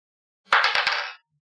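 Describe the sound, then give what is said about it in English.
A short clattering rattle lasting under a second, with four sharp clicks in quick succession as dice tumble and settle. No voices are heard. “Roll that dice.”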